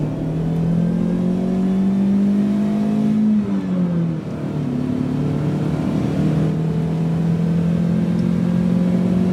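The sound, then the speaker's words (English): A packed car's engine revs up and pulls away to hit the road, its steady hum climbing, dipping briefly with a gear change, then holding a constant drone as the vehicle drives on. Loud, no voices. “You're gonna have to drive. All right, we're gonna hit the road.”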